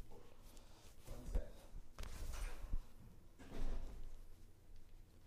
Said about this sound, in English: All right, shut the door.